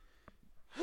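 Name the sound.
sneeze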